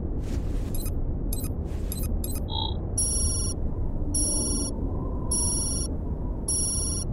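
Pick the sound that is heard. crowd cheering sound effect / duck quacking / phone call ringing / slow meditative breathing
phone call ringing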